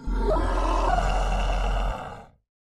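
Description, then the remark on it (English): A single loud werewolf howl from a man whose mouth and nose have grown and become covered with fur, rough and growling, sustained for about two seconds over a deep rumble before trailing off into silence. No one speaks. “As the man stands fully, you notice his mouth and nose have inexplicably grown and is now covered with fur and releases a frightening howl that sends shivers down your spine.”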